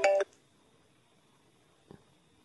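A phone ringtone chirps briefly and loudly at the very start, a quarter-second electronic melody that cuts off abruptly, followed by near silence and one faint click.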